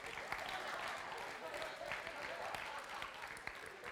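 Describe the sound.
An audience at a worship gathering applauds steadily throughout, a dense wash of many hands clapping at an even level with scattered sharper claps, with faint crowd voices mixed in.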